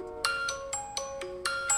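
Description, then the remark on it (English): A bright, metallic triangle-like chime plays a quick tune of about seven evenly spaced ringing notes from an ad on a phone, each note sustaining briefly into the next, moderately loud with no talking. “That sounds like the worst alarm.”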